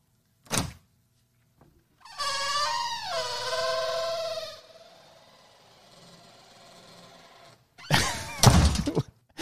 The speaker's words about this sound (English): That was the squeaky door. We felt like we should play us back in with the horrific sounds of entering your studio here in the Red Room.